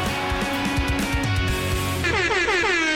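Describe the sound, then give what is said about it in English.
Loud air horns blare in a sustained, overlapping double blast, their brassy tones bending and wavering toward the end with no one speaking. “It's not just one air horn. It's a double air horn situation.”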